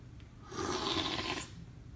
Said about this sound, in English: Now for the tasting and the slurping. Slurpy slurp.